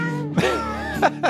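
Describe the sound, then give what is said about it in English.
A cat lets out a drawn-out, wavering meow, followed by two shorter, sharper cries, over a steady low hum in the background. “They just want to get in the podcast room. Oh, that's funny. Looks like my cat right there.”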